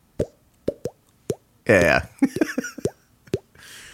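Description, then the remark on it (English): Someone makes water-drop plops with their mouth: short, hollow pops, each with a quick upward pitch bend, repeated at an uneven pace. A voice speaks briefly between them, then a few more plops follow. “Yeah, every time I do that little water drop noise.”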